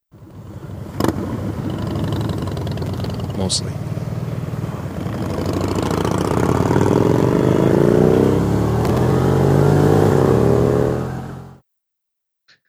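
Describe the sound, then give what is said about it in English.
A loud motorcycle engine with an aftermarket Two Brother exhaust drones steadily, its pitch climbing as it accelerates, with wind-like rush and a brief spoken voice mixed in before it cuts off. “And if that's not enough, I have one just to prove that you can still hear the spider over my bike.”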